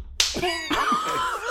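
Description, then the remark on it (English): A loud, sharp hand slap to a man's face, followed about half a second later by a second smack, each with a brief bright crack that fades quickly. “Just slap man in the face.”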